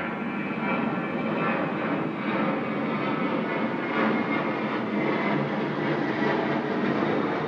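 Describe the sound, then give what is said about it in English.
A propeller airplane drones steadily overhead, its engine a loud, continuous roar with a slight rise and fall in intensity, heard alone without any voices. “Oh, hey, everybody in the plane right now. Where are you flying?”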